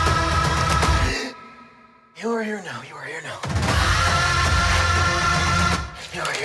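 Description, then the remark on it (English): Heavy, loud breathing with long rough exhales and a short strained, voiced sigh in the middle before the harsh breaths resume. “Your breathing is stressing me out.”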